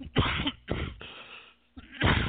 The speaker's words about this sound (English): Excuse me. Got a little cough here. I'm kind of getting over something here.